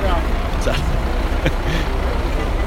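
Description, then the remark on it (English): Steady road traffic rumbles throughout outside a football ground after a match, with heavy engines idling and moving, like buses pulling away as people leave on buses, plus a few short hissing bursts and an indistinct murmur of voices in the background. “So anyway, that's the looks like everybody's getting off on the buses and stuff.”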